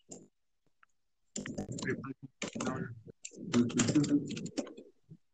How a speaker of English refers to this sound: I hear someone furiously typing. That's me. I'm furiously typing.